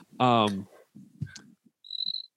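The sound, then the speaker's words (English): A short burst of cricket chirping outdoors, a thin, high trill lasting under half a second, follows a brief voiced sound and some low rustling. The chirp is clear but fairly quiet. “Was that a real cricket, or do you make a sound?”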